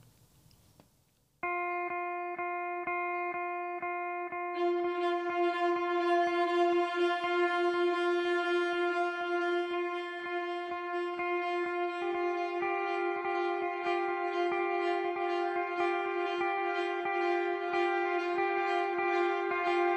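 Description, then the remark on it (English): An instrumental film score cue from the movie You Were Never Really Here: a sustained, buzzy drone begins after a moment of quiet, then gains brighter overtone layers over a steady, ticking pulse that keeps a mechanical rhythm throughout. “Well, that leads us specifically to our next song, yeah, which is a cue from the movie You Were Never Really Here.”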